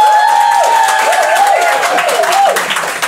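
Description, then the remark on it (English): An audience claps steadily for about three seconds to show agreement that pantomime is great and doesn't need to change, a dense wash of overlapping hand claps at a fairly constant loudness, with voices calling and whooping over the applause. “If you think that Panto is great and doesn't need to change and it's just what it is, clap now.”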